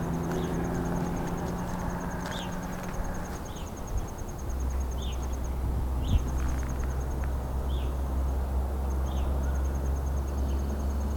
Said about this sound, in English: There's an evening grosbeak.